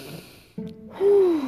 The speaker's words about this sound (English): In through your nose, out through your mouth, in through your nose, out through your mouth, in through your nose. Hold it and then blow it out through your mouth. And each of those things has to be making noise.